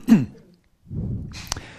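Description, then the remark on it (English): A cough: a short, raspy burst, a brief pause, then a longer, rougher hacking cough with a sharp catch near the end. No one speaks. “So, let me just have a cough for this.”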